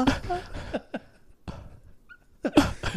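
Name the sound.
imitated heavy breathing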